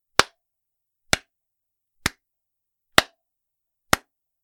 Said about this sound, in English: And they just start slow clapping.